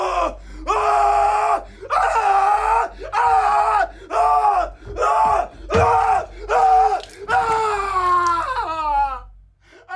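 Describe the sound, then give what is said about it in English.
Actor Nicolas Cage screams over and over in long, strained bursts in a movie's bathroom scene, loud, each cry separated by brief gasping pauses, ending in a ragged, trembling wail. “I would say once Nic Cage has his Cage crazy power up scene where he just starts screaming like he's in some anime.”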